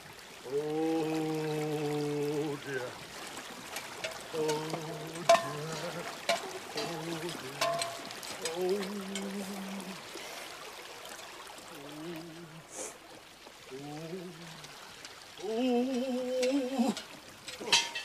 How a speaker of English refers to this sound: See, that wasn't difficult at all. It's not even like a stream. It's like a creek bed. It was like, there's like this, like an inch of water in there.